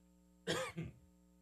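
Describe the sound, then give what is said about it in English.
A single harsh cough bursts out, followed by a shorter second rasping cough, with faint steady hum in the background and no talking. “Can't work my own mic button right now, and I've got a bit of a cough, it seems.”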